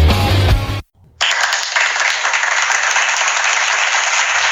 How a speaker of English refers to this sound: There you go, my friend. That is my clap that I promised you. I'm a man of my word.